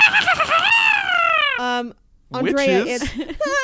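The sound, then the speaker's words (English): High-pitched dolphin squeals and whistles slide downward, then give way to a buzzy pulsed burst. After a brief silence comes a flurry of warbling chirps and squeaks. “Andrea, it's dolphins. Both of these coming noises are real in nature.”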